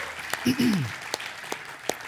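A crowd claps in a steady round of applause for a newly started staff member who led the Disciple Now weekend, dense and continuous, with sharper individual claps standing out and a brief whoop or cheer rising early on.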